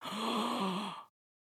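A single excited gasp, breathy and voiced with a slight rising-falling pitch, lasting about a second, loud, then silence.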